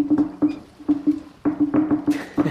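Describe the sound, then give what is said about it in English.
Someone knocks on a door in a long, irregular flurry of about a dozen sharp knocks, each with a hollow wooden ring, uneven in timing with no steady pattern, and no voices. “That's when Kanara knocks on the door.”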